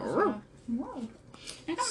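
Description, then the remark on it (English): A dog gives three short, whiny yelps and whimpers, each rising then falling in pitch, separated by brief pauses, moderately loud. “Yes, it was a dog.”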